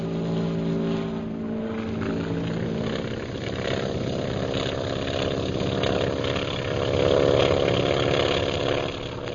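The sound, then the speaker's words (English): Propeller engines of bomber planes drone steadily as they take off, a dense, rumbling roar with harmonic hum that swells louder toward the end, with no voices present. “There go the bombers, sir.”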